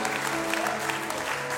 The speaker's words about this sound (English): Somebody shout amen. Come on, give God a great, great hand clap.